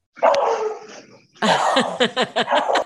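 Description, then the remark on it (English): A dog barks loudly, a drawn-out yowling bark followed after a short pause by a rapid string of about five or six sharp barks, with no one talking. “Your dog agrees.”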